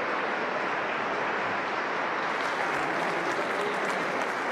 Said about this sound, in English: I wonder how long they was clapping. I better say, you need to get off the stage now.